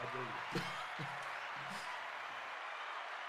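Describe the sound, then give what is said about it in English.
A steady wash of applause played as a sound effect, dense and even across the whole stretch, with a few faint voices or shouts mixed in beneath the clapping. “We got the applause right here, right?”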